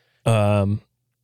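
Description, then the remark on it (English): A single loud burp lasting about half a second, deep and steady in pitch with a raspy tone, ending abruptly and followed by silence. “That was just a regular burp.”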